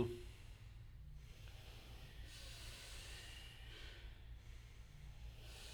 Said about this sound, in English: First you inhale into the belly, follows the chest. You exhale from the belly. Then the chest, long in the hissing breath. Continue.